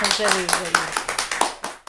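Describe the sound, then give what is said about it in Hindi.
A short burst of audience applause, with a steady patter of claps; a voice briefly overlaps the start before the clapping continues on its own and then stops. “मैं चाहूंगा कि आप लोग एक बार उनके लिए ताली बजाएं।”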